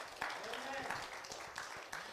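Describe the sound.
A church audience claps its hands for God in a dense, steady burst of applause lasting a couple of seconds, with a few voices calling out over the crisp, overlapping claps.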